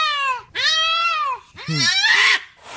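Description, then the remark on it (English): A cat lets out three long, loud, drawn-out yowls in close succession, harsh and wavering with a strained, angry edge, as it watches a brand new puppy being brought into the house. No talking. “And the cat is looking out the window, seeing one of its owners bringing this dog into the house, and this thing is not happy.”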